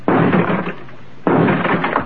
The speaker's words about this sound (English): Stand away from the door, Skipper. I'll have to blast the lockout.